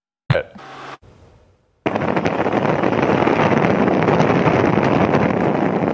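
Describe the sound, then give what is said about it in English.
After a brief thump and a short burst of noise, a loud, dense roar of a 3-meter-high tsunami wave heading for the coast of Indonesia rises abruptly and holds steady to the end, rumbling and hissing like churning water and wind. “That white line across the screen with its thundering roar is a 3-meter high tsunami heading for the coast of Indonesia.”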